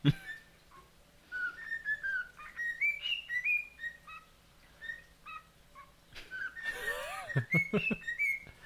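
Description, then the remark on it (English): A bird whistles a bouncy Super Mario video game melody in quick, clear notes, rising and falling in a tune-like pattern, with a burst of harsher squawking and chirps near the end. “What this is actually a bird that can whistle a tune of Super Mario, which actually caught it pretty nice.”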